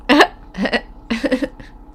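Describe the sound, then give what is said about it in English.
Loud hiccups break up short bursts of laughter: a sharp voiced yelp first, then three or four choppy catches spaced out over a couple of seconds, with no talking. “My laughs sound even stupider with my hiccups.”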